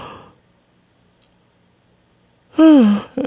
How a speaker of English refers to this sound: You're yawning to literally calm yourself down. And dude, I feel it before shows. Like before I step on stage, I yawn a few times.